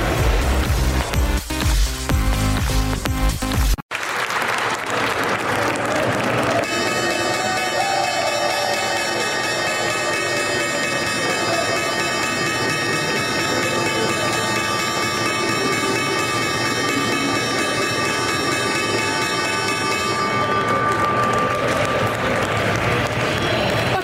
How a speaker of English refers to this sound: That was the opening bell this morning. Lots of clapping, smiling people.